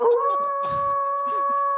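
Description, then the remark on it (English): A voice holds a long, steady howl in imitation of a wolf, sustaining one even, mid-pitched note for nearly two seconds, with brief breathy noises and faint murmurs underneath. “Cue the wolf howl.”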